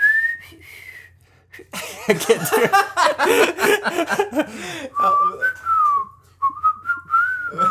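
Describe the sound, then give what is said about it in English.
A person whistles a song's intro melody, starting too high, breaks off into laughter and a brief spoken remark, then resumes with a lower whistled melody of several quick notes. “I started way too high. My whistling stopped.”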